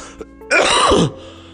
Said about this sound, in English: That cough though, fuck.